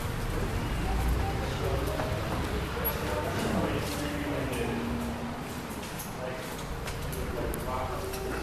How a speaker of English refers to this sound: So let's get out of the rain and go see Mickey Mouse.